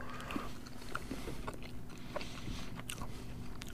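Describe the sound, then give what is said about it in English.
Someone chews cranberry sauce flavored candy corn for several seconds, with soft, irregular crunching and wet mastication sounds and no talking. “I've just been reminded why I hate candy corn.”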